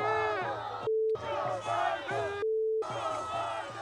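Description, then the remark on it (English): A protest crowd chants and yells about murdering children in loud, rhythmic unison, broken twice by a steady high-pitched censor bleep that cuts out the voices. “They're yelling about murdering children.”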